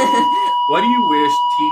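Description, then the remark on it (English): A school bell sounds as a steady, unbroken mid-pitched electronic tone for the whole stretch, holding level beneath voices talking over it. “Oh, there goes our bell.”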